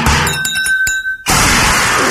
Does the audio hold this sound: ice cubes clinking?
yes